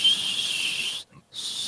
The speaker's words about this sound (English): Wait, hold on. I can whistle. That's a note. Yeah, that's about as good as I can do.